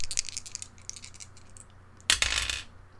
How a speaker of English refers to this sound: So let's roll those good dice.